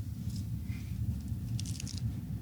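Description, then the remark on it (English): Someone in a truck bites and chews into a cheesy pizza, having to really bite through the cheese, with a steady low, muffled mashing and a brief burst of wet, squishy crunching partway through. No one speaks. “I'm biting into it, and I've got to really bite through the cheese.”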